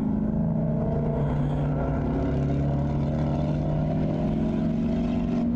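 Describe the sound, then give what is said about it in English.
Race car engines, including an orange Mustang, roar steadily and loudly, their droning pitch climbing gradually as the cars accelerate, with no voices over the sustained mechanical growl. “Looks like he's giving it the beans now. Comes the orange Mustang. And then hot pursuit.”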